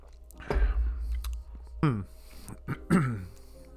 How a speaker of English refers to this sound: So this is the only one that I have not tried, the Imperial Stout brewed with chocolate and coconut flavors. It is the German Chocolate Cake Imperial Stout from Wicked Weed's Guilty Pleasures. Let's take a sip.